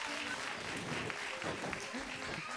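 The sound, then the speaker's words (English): A crowd claps in a steady round of applause during a service, dense and even throughout, with a few voices calling out and murmuring over the clapping, applauding two helpers who played Adam and Eve. “But before we do, give my Adam and Eve a big round of applause, too, for helping out.”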